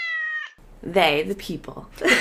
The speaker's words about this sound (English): Kitty was meowing.